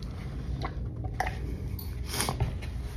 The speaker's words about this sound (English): And, you know, this is going to one of the key reasons of why I'm talking about the Atlanta Hawks as I take my little sip.